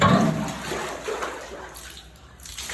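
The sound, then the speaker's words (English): A steady sound of water seeping out from under a baptistry pot, a rushing, sloshing wash that starts strongest and gradually thins out over a few seconds, with no one speaking. “He said, nope, there's water under the pot.”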